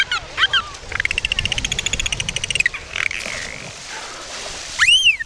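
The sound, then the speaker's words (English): A dolphin vocalizes to visitors at Discovery Cove: a few quick chirps, then a long buzzing train of rapid pulses, and finally a bright, rising whistle that loops upward at the end, with no talking. “The dolphins are happy to interact with humans. They splash them, wave at them, tow them through the water, and even communicate with them.”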